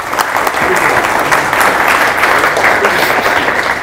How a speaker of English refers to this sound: All right, can we clap on? Can we do that? Yeah, go. Get in there.